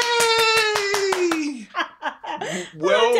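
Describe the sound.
A short round of applause welcoming a guest, a property professional, at the Dublin Multiple Streams event in Dublin: about eight crisp, evenly spaced claps under a long, falling cheer from a voice, followed by a few excited vocal whoops and sounds.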